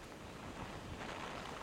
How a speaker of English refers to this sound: The wind gusts right now, they are relentless, hitting about 70 miles per hour.